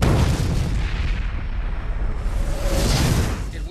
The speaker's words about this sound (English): That is a nice explosion. And look at that. The shields took that. Yeah. No problem whatsoever.